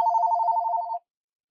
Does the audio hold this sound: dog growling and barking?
no